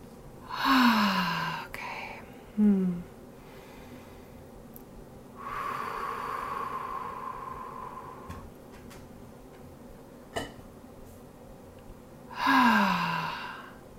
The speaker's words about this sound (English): I encourage you to relax your body and let's just slow down our breathing here.